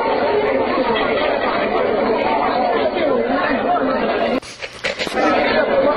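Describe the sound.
A crowd of people perched on a wall at the Praetorium, Pontius Pilate's headquarters, watching something, in a steady babble of many overlapping voices chattering at once, briefly interrupted near the end by a few sharp, crackling bursts before the crowd noise picks back up.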